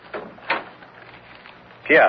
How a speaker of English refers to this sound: You may close the door behind you.